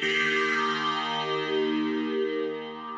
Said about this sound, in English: I put this thing on called Pan Man, which makes it go from left to right. You can feel it moving now. Yeah. And then added some reverb, because why not?